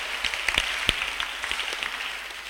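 An audience claps together in a dense, steady wash of many hands, with a few sharper individual claps popping out above the mass. No voices can be heard.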